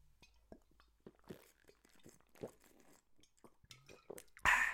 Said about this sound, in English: Yes, that's me drinking water.